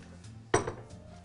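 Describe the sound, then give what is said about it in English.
A single sharp metallic clunk as a pot of warm, bright green parsley puree with oil is set down on a stove burner, fairly loud, with a short ringing tail over a low hum. “So now that we have all of our warm, beautifully bright green parsley puree, we can go ahead and we can just get this right on a burner.”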